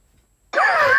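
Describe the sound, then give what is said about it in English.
After a brief silence, a voice breaks into a loud, strained oink imitating a Minecraft pig, a single nasal grunt that wavers in pitch and runs to the end. “Hey, that was a Minecraft pig.”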